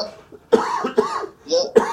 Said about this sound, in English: So, excuse me. I got this cough.